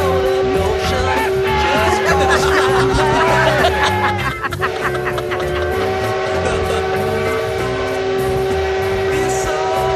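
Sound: steam train horn blowing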